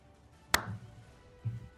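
A lone sharp, crisp hand clap, a mocking polite golf clap, rings out once, followed about a second later by a softer, duller low thump, with no voices in between.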